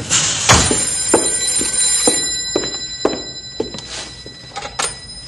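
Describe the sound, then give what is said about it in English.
A telephone at a ranger headquarters rings with a steady, high metallic jangle, broken by a series of sharp, unevenly spaced clicks over about five seconds. No one speaks. “Oh, the telephone's a buzzing.”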